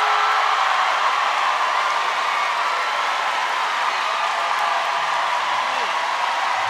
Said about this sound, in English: Give us your most exuberant, your loudest, your warmest applause for Hari Kondabolu.